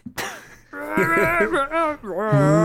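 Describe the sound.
A person playing a bear-sized character belts out a wordless song melody in a gruff, growling voice, roaring it like a bear. The pitch slides up and down through a short melody, loud, lasting a few seconds.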